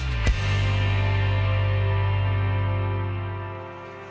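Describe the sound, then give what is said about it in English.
A mosquito buzzes in flight, a steady, rich whining hum that holds loud for several seconds after a brief click, then fades slightly at the end. “Mosquitoes. Annoying little things, but they can be far more than annoying.”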